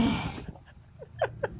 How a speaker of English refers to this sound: Bless you.